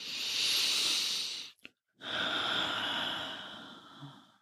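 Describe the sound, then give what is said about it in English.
A long, airy inhale is followed by a brief pause, then a slow, steady exhale that gradually fades. The breathing is clear, with no talking. “Breathe in deeply and exhale slowly.”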